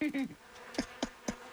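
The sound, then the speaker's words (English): A swarm of bees buzzes in a steady, droning hum, with a few brief, louder passes rising over it as individual bees fly past. “A lot of bees.”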